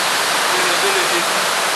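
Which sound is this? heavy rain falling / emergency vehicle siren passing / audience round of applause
heavy rain falling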